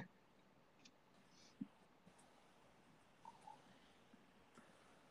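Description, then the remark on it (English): Faint, scattered keyboard clicks as someone types a name into a Google search, a handful of soft taps spaced irregularly over a quiet background hiss, with no voices present. “I know the name's going to come to me as soon as I start typing it in.”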